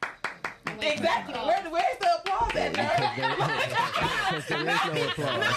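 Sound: slow hand clapping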